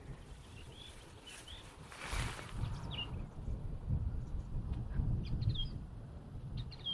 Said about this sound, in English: Well, that's a song thrush. He's going through his repertoire.